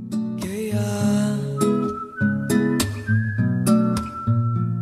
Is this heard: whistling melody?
yes